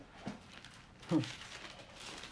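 Soft, scattered paper rustling as pages of a book are turned to find the book of Ecclesiastes, with a couple of brief swishes standing out and faint murmuring in the background.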